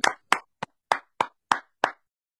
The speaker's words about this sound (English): Can we have a little round of applause for Louis Fies? Come on, everyone. Thank you, Louis.